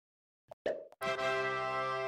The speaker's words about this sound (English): This, jeez, another one. That was like a cork opening. That means it's champagne time.